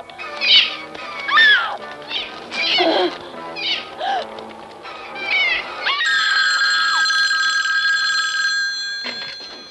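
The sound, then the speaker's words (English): A telephone rings loudly and steadily for about three seconds near the end, preceded by a stretch of high, wavering cat-like meows and cries. “We have that exact phone sitting right there.”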